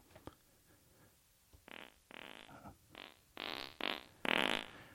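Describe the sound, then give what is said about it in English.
A rapid series of fart sound effects, about six bursts growing longer and louder, arranged in a playful jingle-like rhythm with brief gaps between them. “Let's play us out with the fart intro.”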